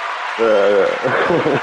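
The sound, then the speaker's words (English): A short burst of steady crowd applause played as a sound effect, a dense hiss of clapping that runs throughout while a voice talks loudly over it. “Round of applause for the ratchet girls.”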